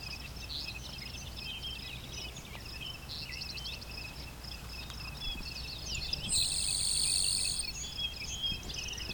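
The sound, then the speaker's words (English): A grasshopper sparrow gives a very high-pitched, rapid tick-tick buzz for about a second, standing out over a steady, continuous chorus of insects, with no talking. “Just a little tick-tick buzz.”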